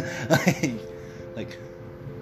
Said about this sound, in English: like, that was me forcing a cough. And it felt, like, bad. Even though I'm not really bad.